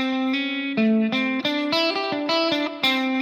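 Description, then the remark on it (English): An electric guitar with a thick, distorted tone plays a pentatonic blues phrase of about a dozen sustained notes, moving forward from the 5 to the 6. The notes step up and down in a mid-range melody, with no voices. “So the trick is when you're going to play that 5 to 6, do it as a forward motion from 5 to 6.”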